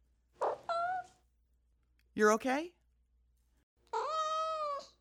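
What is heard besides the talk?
cat meowing and purring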